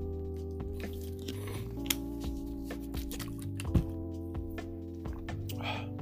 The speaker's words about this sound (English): Hold on, let me drink this water.